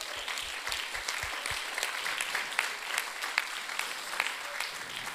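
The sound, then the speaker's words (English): An audience applauds steadily for the standing volunteers and leaders of the Hope Center, a dense wash of many hands clapping at an even level throughout, with no voices standing out. “Come on, clap your hands.”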